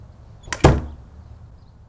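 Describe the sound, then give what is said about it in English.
A door shuts with a quick double impact, a light knock followed by a heavier thud that rings briefly, then fades into quiet room tone. “Keep the door shut, but listen.”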